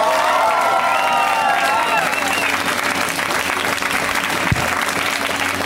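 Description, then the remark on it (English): A loud, dense burst of audience applause at a comedy show, welcoming a comedian on their first time on the show, with whoops and cheers rising over it, sustained at full strength for several seconds before thinning slightly toward the end. “When it's somebody's first time on the show, we welcome them with a super loud round of applause.”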